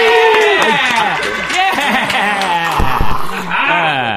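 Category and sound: crowd, audience applauding and cheering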